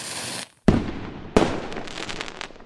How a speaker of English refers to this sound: Come the 15th day of the month, we celebrate the Lantern Festival. We would usually buy or make paper lanterns, release them in the air, guess lantern riddles, and my uncle would set off firecrackers.